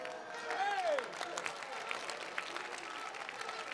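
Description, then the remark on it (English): An audience claps in a dense, steady wash of applause that holds for a few seconds, with a brief whooping voice rising and falling near the start. “No, if you are not clapping, you are a suspect.”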